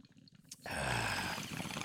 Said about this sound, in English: there's a little bong there. You take a hit and let me take a sip at the same time, yeah?